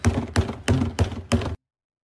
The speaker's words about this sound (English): Trash can banging. Oh, okay.